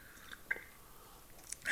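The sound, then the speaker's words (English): Quiet sips of French press coffee from a mug: a few soft wet mouth clicks, then a louder slurp at the very end, with no talking. “To our first sip.”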